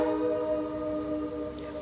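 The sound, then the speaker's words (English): A passing train near a home by railroad tracks sounds its horn in one steady, sustained chord-like blast, moderately loud, holding throughout with a low rumble beneath and no voices. “You hear the train?”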